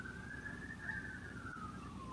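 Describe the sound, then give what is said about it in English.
A police car siren as the car drives by, holding steady for a moment, then slowly rising and falling back down over a constant low rumble of traffic noise, with no talking. “police okay. car driving by.”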